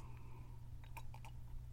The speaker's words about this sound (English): Yeah, so we took a sip of our wine. No, some of us took gulps.